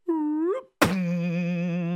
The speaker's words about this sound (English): He made such a loud thud, his father-in-law ran up.